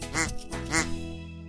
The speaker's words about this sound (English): I got a duck because I won. Your very own rubber duck!